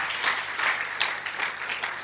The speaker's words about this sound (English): Come on, give him another clap.